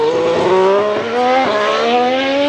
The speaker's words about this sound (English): How does that affect the engine sounds? Formula One now is actually a hybrid, and so they have a combination of electric motors, turbochargers, and a V6 engine.